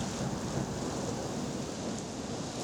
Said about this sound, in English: September 29th, 1938. It's a Thursday, and it's raining in Prague.